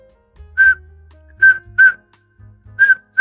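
A person whistles a short, bright tune of four clipped notes in an uneven rhythm, the theme of the cartoon Ed and Eddie, with a low rumbling hum underneath and no talking.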